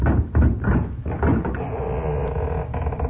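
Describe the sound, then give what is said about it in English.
A door is unlatched and swung open at night, with a few wooden knocks and clatters followed by a longer creaking scrape as it moves. “Here comes somebody to the door.”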